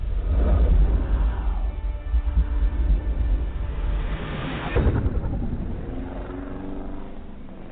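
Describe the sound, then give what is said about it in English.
A Harley motorcycle engine revs hard, a loud low rumble that climbs and surges in pitch, swelling to a peak near the middle before settling into a steady throaty idle with rising harmonic sweeps. “You hear that motorcycle in the background there? That was me, you know, revving my Harley.”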